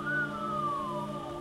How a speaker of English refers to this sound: whistled.